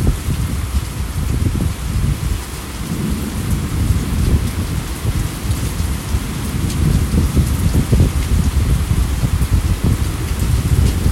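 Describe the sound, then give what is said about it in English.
Steady, heavy rain hisses and patters without a break while deep rumbles of thunder roll underneath, swelling and fading throughout a loud, continuous storm with no voices. “connecting heaven and earth. It's just the water cycle, baby. And it brings all this.”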